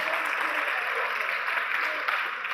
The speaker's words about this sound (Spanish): Un aplauso, por favor